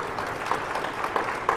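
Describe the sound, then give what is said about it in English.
An audience claps their hands in steady, dense applause for a woman who has come back to the service, many overlapping claps forming a continuous crackling wash with a few sharper claps standing out. “Clap your hands.”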